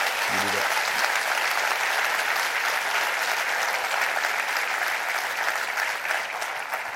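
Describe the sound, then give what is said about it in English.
An audience claps loudly and steadily for about seven seconds as the preacher finishes his message, a dense, sustained wash of many hands with no pauses, fading only slightly at the very end. “Would you throw your hands together and clap real big as I finish this message tonight?”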